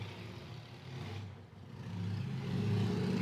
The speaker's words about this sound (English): That was not Bradford farting. That is a car out in the street.